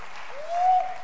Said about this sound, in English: Clap your hands, it'll make you feel good.